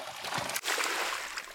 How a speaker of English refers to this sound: I try and have a little fun creating some sounds for our transitions. Okay. Alright, let's do this. Jumping into the log. Splish, splash.